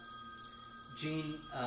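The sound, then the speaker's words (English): A mobile phone rings with a steady, moderately loud electronic tone, and voices start talking over it toward the end. “So we're going to put that on vibrate. I'd say I could answer it for you.”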